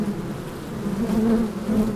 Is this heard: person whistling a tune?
no